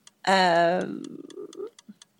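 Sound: ticking clock countdown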